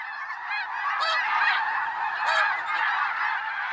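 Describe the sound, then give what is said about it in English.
A dense, continuous chorus of snow geese honking and yelping overhead in autumn along a North American flyway, returning from their Arctic breeding grounds, many birds calling at once in an overlapping, clamorous wash of sound with no talking. “Millions of snow geese are returning from their Arctic breeding grounds, thousands of geese in any one flock.”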